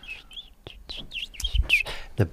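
A quick run of high, thin bird chirps, about eight short calls in irregular succession, clear, with a couple of soft low thumps underneath and no talking.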